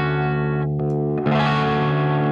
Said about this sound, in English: I turned it down, so now it's around 11 o'clock or so. And see, like, now that's sounding a lot more what the guitar really sounds like to me.